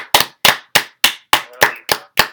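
Hands clapping in a steady, even rhythm: eight sharp, loud claps about three per second, each with a short ringing tail, and no voices.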